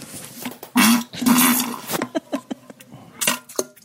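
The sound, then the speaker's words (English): A voice imitates a fart with two raspy, buzzing blows, then makes a string of short, sharp mouth pops like plops, fairly loud. “Well, you can hear the plop there. That was fart, plop.”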